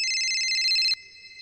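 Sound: telephone ringing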